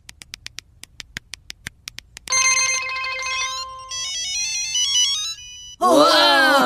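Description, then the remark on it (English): A quick run of sharp tapping clicks gives way to bright electronic cell phone text-alert melodies chiming loudly one after another, before a voice briefly cuts in at the end. “Our cell phones! Our Bluetooth! My chip calculator!”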